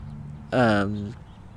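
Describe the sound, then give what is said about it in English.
A single loud, harsh bird squawk lasting about half a second, dropping slightly in pitch as it fades, over a low steady outdoor hum at a spot where cars go by. “You can hear cars going by, you can hear birds squawking, and you can hear me, a boy, talking into a microphone.”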